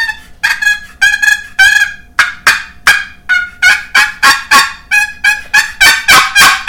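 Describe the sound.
A box call dragged to imitate a turkey purr, giving a steady run of about fourteen loud, raspy, nasal notes, each starting with a scratchy stroke. No one talks over it.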